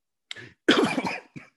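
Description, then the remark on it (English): A short burst of three coughs: a quick one, a longer harsh rasping cough in the middle, then a brief final hack, with silence between. “No, I wasn't coughing because of the answer.”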